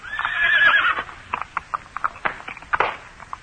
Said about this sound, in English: A horse attached to one of the wagons was playing up, and as it came opposite us, the driver produced a great stave, and cursing angrily, he began to belabor the unfortunate animal.